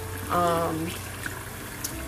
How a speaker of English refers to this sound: H2O, the same kind of water that you hear pouring right now as I clean my forks and my knives and stuff and put them into a dishwasher.